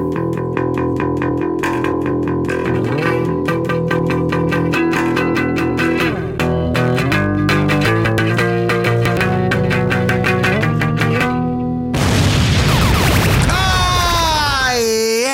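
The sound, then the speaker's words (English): A person imitates a roar into a microphone: a harsh, heavily distorted growling voice with wavering, sliding pitch bursts in loudly at the end, following a stretch of rhythmic, chordal music. “Hey, you want to hear my impression of a roar off?”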